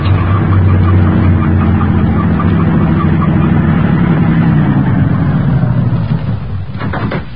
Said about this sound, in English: The truck has no headlights on, but it's going to pass right by us.